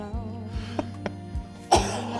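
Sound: cough into the microphone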